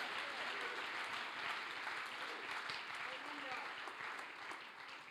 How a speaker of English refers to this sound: Clap your hands if you feel the presence of God.